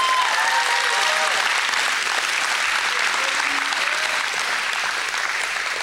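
A crowd applauds steadily for several seconds, a dense, even wash of clapping with faint voices and a few calls mixed in, filling the room without letting up.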